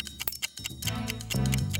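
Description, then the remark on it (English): A steady, mechanical ticking of sharp, evenly spaced clicks, about five per second, continues throughout. Partway through, a low, droning hum swells up beneath the ticks. “do you hear that ticking noise? I think it's coming from the Cyberman.”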